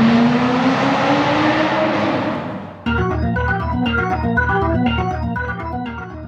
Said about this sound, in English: This car can outrun anything on wheels. Let it out.